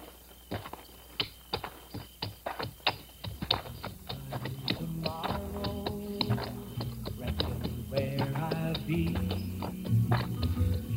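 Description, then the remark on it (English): A horse's hooves clip-clop in a steady, even rhythm, crisp, as it walks. After a few seconds, a murmur of voices and tonal sound rises underneath while the hoofbeats keep going. “You walk ahead of my horse.”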